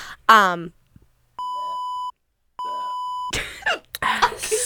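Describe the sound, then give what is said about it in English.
Two long, steady electronic beeps sound one after the other with a short pause between, fairly loud and clear. A brief vocal sound comes before them, with noisy coughing or talk after. “We just beep, beep, like a heart monitor.”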